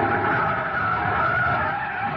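A car's tires screech in a long, loud, continuous skid as it brakes hard, the harsh squeal holding steady for a couple of seconds.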